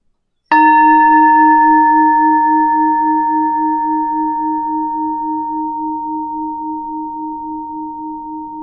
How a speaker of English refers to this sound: For now, I invite you to hear the bell and let us worship together.